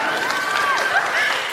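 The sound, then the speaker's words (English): An audience applauds for the incoming education officer of the Sheffield Students' Union during a question session, steady dense clapping with a few raised voices and cheers mixed in, sustained and fairly loud throughout the short burst. “So there's a round of applause, I think.”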